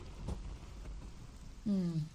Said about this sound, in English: you're all hustled under like an eave of thatch and the rain's dripping down almost like a curtain as you're all huddled, which is further making it so that people aren't really noticing you.